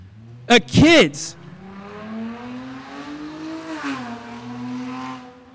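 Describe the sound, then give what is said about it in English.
A car engine revs hard with a couple of sharp bursts at the start, then settles into a steady, droning whine that climbs gradually in pitch, fairly loud. “Kids, you might like that car, but check this out.”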